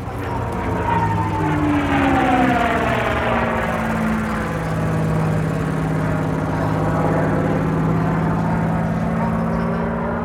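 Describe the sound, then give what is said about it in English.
A loud propeller aircraft roars past at the Saturday night air show at Sun and Fun 2016, with a steady engine drone, its buzzing tone sliding downward in pitch as it flies by, sustained for the whole stretch with no talking. “for the very beginning of the Saturday night air show here at Sun and Fun 2016.”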